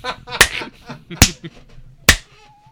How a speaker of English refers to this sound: Ask my wife's butt how hard I slap. Jesus Christ. Bone slap. Cheek.